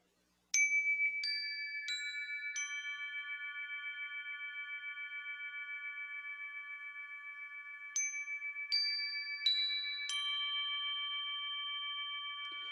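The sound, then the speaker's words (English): Chimes are struck four times in a quick rising series, their clear metallic tones blending into a long, sustained ringing, then another run of four strikes sets them ringing again. No one speaks. “I'm just going to ding these chimes because I'm getting all heated.”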